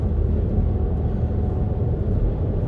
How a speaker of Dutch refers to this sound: Een invoerende vrachtwagen.